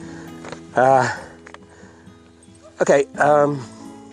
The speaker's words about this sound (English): Gosh, can you hear that dog howling in the background? Don't know if you're getting that on the mic.